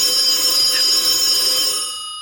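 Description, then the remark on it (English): A telephone rings in another room with a steady, high, bright electronic trill that carries through the whole moment before fading slightly at the end, heard alone with no voices. “Oh, there's our phone. That's our important person phone in the other room.”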